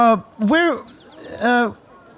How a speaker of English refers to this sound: Is that a bear? It's a horse, mate.